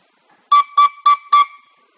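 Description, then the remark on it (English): Four short, evenly spaced toots on a penny whistle, each a bright, steady high note, played loud with brief silences between them and no talking. “So you probably just heard what you would call four toots of this whistle, right?”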